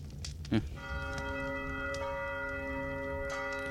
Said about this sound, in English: That sounds like a bell. But like more shrill, like a handheld bell. And that's within 60 feet.